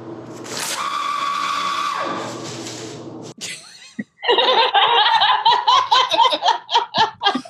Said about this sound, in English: Right, and then they make the noise of this paper towel dispenser.